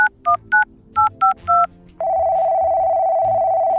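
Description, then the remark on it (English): A quick series of six touch-tone dialing beeps on a voice-activated satellite phone built into a dog's collar, then a steady, unbroken ringing tone on the line that continues to the end, clear with no voices. “Now, to voice activate the sat phone located in my dog detective collar, which is also a fancy bow tie.”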